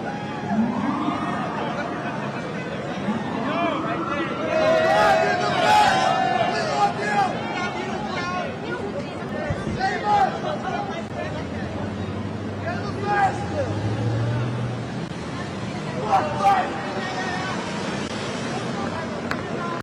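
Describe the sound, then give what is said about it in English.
An outdoor crowd in New York City shouts and cheers in a continuous roar as Donald Trump leaves, with people screaming "I love you", high yells and screams rising out of the noise and dense babble of voices throughout, plus some wind rumble. “You can hear people screaming, I love you.”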